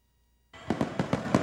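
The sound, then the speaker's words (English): Fireworks crackle and pop after a moment of silence during a 4th of July weekend celebration, a rapid string of five or six sharp bangs over a dense, hissing background of further bursts. “As fireworks rang out across our area in celebration for the 4th of July weekend.”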